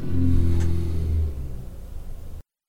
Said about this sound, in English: I heard that motorcycle.